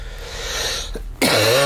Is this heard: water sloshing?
no